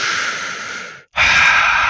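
A loud, deep breath taken while meditating: a long, airy exhale tapers off, a brief pause follows, then a strong, rushing inhale. No one speaks.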